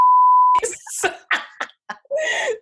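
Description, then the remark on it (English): A steady, pure censor bleep tone sounds loudly for about half a second over a woman's name, then cuts off abruptly as voices resume, with what sounds like brief laughter and talk afterward. “You have to beep her name out now because it was.”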